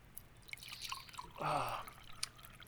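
Liquor splashes into a glass in a short pour lasting about half a second, preceded by a few faint clinks and drips, with quiet room tone around it.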